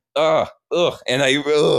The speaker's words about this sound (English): And that little bit of residue, it gives me enough to have the emotional capacity to gasp. Before it would have just been a smooth intake of air, but I